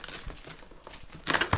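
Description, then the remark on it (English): Crackly crinkling of a taped gift package from a sponsor being handled and pulled open, scattered rustles building to a louder burst of crumpling near the end, with no voices. “We have never had a sponsor send us a gift and force us to open it on the air.”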